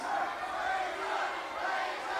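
A large wrestling crowd roars steadily, a dense wall of cheering and yelling voices that holds at a constant loud level throughout without pause, wanting to see Razor Ramon step into the ring.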